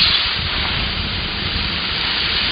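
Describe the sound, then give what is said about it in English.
Water poured onto 800-degree sauna rocks makes a loud, steady hissing sizzle that fills the whole moment, a dense wash of steam noise with no voices. “The sound of water being poured on 800-degree rocks.”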